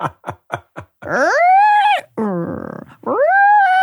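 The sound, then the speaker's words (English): A voice imitates a squeaking car windshield wiper: four quick clicks, then loud, rising, whiny squeals broken by a rough buzzing rasp, all made by mouth with no other talk. “Here's a windshield wiper.”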